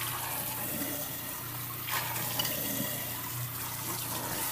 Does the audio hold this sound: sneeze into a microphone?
no